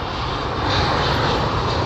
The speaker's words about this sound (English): Damn, so many planes out here. I know I'm by the airport, but damn.